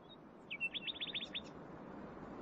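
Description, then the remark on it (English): A nightingale sings at night, a quick burst of repeated high, bright notes in a short rapid phrase over a steady low hiss of background noise. “That night I was kept awake by the unrelentingly beautiful song of the nightingales”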